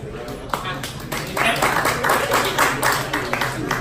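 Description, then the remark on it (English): A few scattered claps build into a brief, uneven round of audience applause for a performer on stage, many hands clapping at once before thinning out again, with voices murmuring underneath. “Actually, speaking of which, round of applause if you've ever been walking down the street and then you forget where you're going.”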